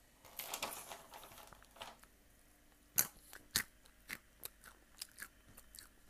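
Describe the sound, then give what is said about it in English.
Someone chews crunchy almonds, with a burst of crunching followed by a series of sharp, irregular crackling bites and chews over about six seconds, with no talking. “All right, we're doing another almond break.”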